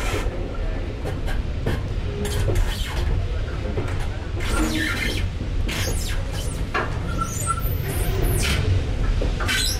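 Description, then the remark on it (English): A train pulled by two steam locomotives rumbles past the Crewe diesel depot after leaving Crewe station, its heavy low roar steady throughout, punctuated by sharp metallic clanks and clatters as the wheels cross junctions. “Crossing junctions. Smoke billowing across the Crewe diesel depot.”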